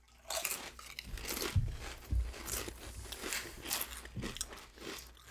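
Loud crunching of a cheesy barbecue-flavored corn chip being bitten and chewed, a rapid series of sharp crackly snaps with a couple of heavier bites, no one speaking.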